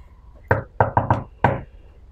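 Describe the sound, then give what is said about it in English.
Five sharp knocks on a wooden door, one, then a quick run of three, then a final one, fairly loud with a short hollow ring after each. “So then I knock on the door and go...”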